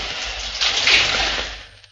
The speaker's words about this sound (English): turned on the shower, crawled into the shower cubicle, clothes and all. The cold needles of water stabbed life into me. Peeled off my clothes. Got to my feet. Stayed under the shower for at least 5 minutes.